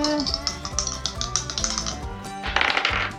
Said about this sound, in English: There's nothing like 11, the sound of real dice.